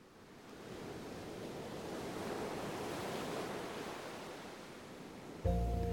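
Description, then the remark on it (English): Ocean surf of the Gulf of Mexico washes steadily onto a shore, a broad hiss of breaking waves that swells and recedes, with a faint breeze mixed in and no voices. “There was only water. The Gulf of Mexico.”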